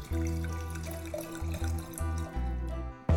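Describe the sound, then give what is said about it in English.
Wine glugs steadily into a glass for a few seconds, a resonant pouring sound with small pulses in the flow, then stops with a faint clink. No voices. “Some of that wine B-roll magic.”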